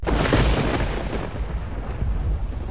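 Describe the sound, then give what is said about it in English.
A deep, rolling rumble of thunder swells in a loud burst and then slowly fades, with a steady hiss of rain running beneath it the whole time, played as a requested sound on Triple M radio. “Welcome back to the All Rain edition.”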